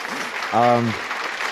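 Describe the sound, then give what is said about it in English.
Audience applause: a steady wash of many hands clapping, moderately loud and unbroken throughout, with a short voiced cheer rising briefly over it midway. “Got to give her a round of applause.”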